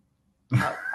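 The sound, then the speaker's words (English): A single cough bursts out after a moment of silence, fairly loud, with a rough, throaty rasp that carries on to the end with no talking. “You going to unmute yourself or, you're just pretending to cough, yeah?”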